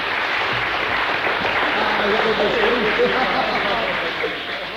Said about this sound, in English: Give him a clap. He's worthy of it.